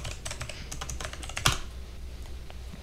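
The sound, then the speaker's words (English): Rapid, irregular clicking of keys on a computer keyboard, fairly quiet, with one sharper, louder keystroke midway through. No voices. “See, my keyboard can barely say that.”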